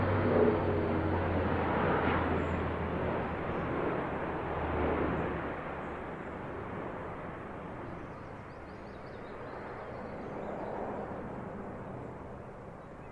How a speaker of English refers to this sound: I thought, gosh, beautiful piece. And this great big military plane came overhead, really low. And as you can hear, but still, it's part of the sound of the countryside.